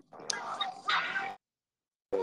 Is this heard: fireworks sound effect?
no